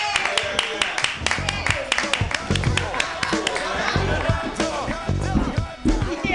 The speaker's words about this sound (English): Clap wildly for